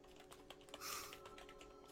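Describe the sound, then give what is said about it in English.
Rapid, irregular clicks of someone typing a name on a computer keyboard, fairly loud, with a brief brighter burst midway and a faint steady hum underneath. “I'm typing the name of the brothel in, damn it.”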